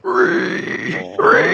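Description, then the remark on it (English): A person imitates a pig squeal with their voice, a loud, strained, harmonic-rich cry held for over a second, breaking briefly before surging again at the end. “I could try to go for the pig squeal.”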